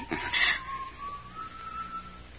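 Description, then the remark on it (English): A brief rustling burst, then a thin whistle holding one long note that drifts slightly upward for about two seconds, fairly soft, with no one talking. “That whistling.”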